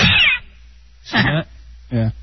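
A recording of a cat is played back: the cat meows three times in quick succession, loud, each cry short and tonal with brief pauses between, over a faint low hum and no talking.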